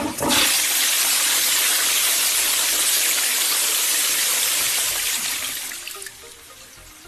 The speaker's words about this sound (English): we should all consider how we deal with our waste and give a thought or two before flushing our toilets.